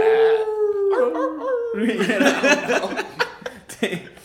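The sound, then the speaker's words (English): A person howls like a wolf, holding a long steady note that wavers and breaks into shorter rising howls, then dissolves into loud laughter and noisy chatter. “It, you know, probably tonight before I go to bed I look at the moon and howl maybe.”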